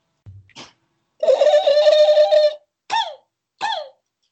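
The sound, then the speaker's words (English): A voice imitates a velociraptor call: a small grunt and a brief squeak, then a long, rasping, high-pitched screech, followed by two short, loud shrieks that swoop downward in pitch. “That's my velociraptor right there.”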